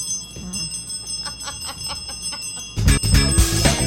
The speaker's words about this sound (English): Ring that bell.